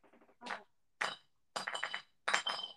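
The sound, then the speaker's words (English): Glass bottles clatter and clink into a container in four separate bright, ringing bursts, each a quick jumble of knocks, with no one talking. “All you hear is like glass shattering.”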